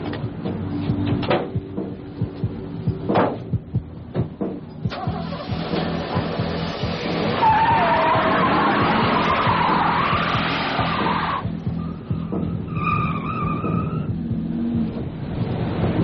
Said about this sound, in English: You know, so they hop into the truck and just peel out.